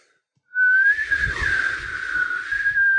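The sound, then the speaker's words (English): A person whistles a single sustained, steady note with a breathy rushing hiss layered over it, imitating a whistling swoosh sound with the mouth, followed by saying the word "swoosh". It lasts a few seconds. “A whistle followed by saying the word swoosh.”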